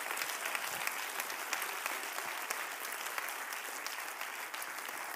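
An audience claps together in steady, dense applause, with many overlapping hand claps forming a continuous bright wash of sound that stays at an even loudness throughout.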